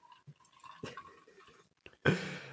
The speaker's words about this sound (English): That was a strong pour. What was that? It's not like a margarita. I was wondering dude, if you heard that. I thought you grabbed the vodka bottle, and all I heard was glug, glug, glug, glug, glug, glug, glug, glug, glug. I was trying to be discreet.